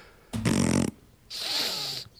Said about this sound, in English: I've even got a button for it. You ready? Ready for this? I can press a button. I'll give you the fart sniffer noise.